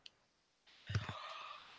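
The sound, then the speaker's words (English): A sharp little mouse click as someone clicks a link for a KDEX Defense CDX 40 Shadow in 375 JTAC, followed by a rustling hiss and a soft thump, like a hand shifting at a desk. “I don't know, but he has a link. I'm clicking it now.”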